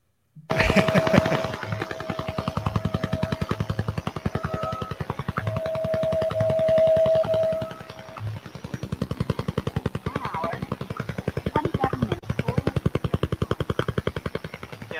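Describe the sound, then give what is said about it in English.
The Russian woodpecker over-the-horizon radar signal: a rapid, relentless tapping pulse like a machine-gun or helicopter chop, loud and steady for the whole stretch, with a thin sustained tone riding through it before it briefly dips and resumes. “Yes, this is the Russian woodpecker signal.”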